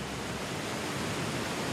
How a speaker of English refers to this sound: In addition to the final product, drinking water, there is also a byproduct. It's sloshing around in what's essentially a big drainage pool.